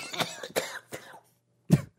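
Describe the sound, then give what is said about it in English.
A harsh coughing fit after spit went down the wrong way: three rapid wet coughs in a row, a brief pause, then one more forceful hacking cough, with no talking. “Dude, …, you look so gross when you cough”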